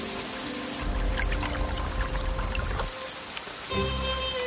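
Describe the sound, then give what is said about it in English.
Water pours steadily into a water hole, filling it, a continuous splashing rush with a low gurgle that briefly thins out before surging again. No voices. “Finally, the water hole is increasing.”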